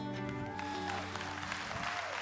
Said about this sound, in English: Good morning, Celebration Church. Hey, keep that round of applause going for everybody joining us at our campuses, church online, our family environments, and even everyone listening via podcast someday in the future.